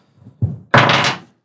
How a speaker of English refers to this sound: So I'm going to roll some d10s here. Give me a second.